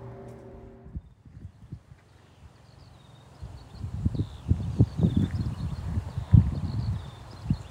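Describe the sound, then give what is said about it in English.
A lark's high, thin warbling song trills faintly and continuously above loud, rhythmic clip-clopping hoofbeats and rustling movement, with no talking. “Well, I hope you can hear that, because it's the most beautiful lark.”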